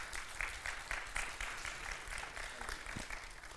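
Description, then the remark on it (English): An audience claps together in a steady, rhythmic beat, many hands striking in unison about twice a second over a dense wash of crowd noise, fairly loud and sustained throughout. “Man, if you agree with that, come on, put your hands together. Clap right now.”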